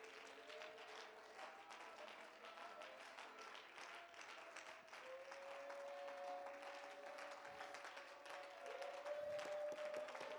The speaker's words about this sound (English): Why don't you clap unto the Lord before you be seated?